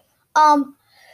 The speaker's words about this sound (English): oh my gosh, I just keep on sneezing.